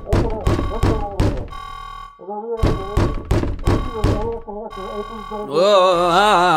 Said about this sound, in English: You all hear banging on the door and muffled shouting from outside.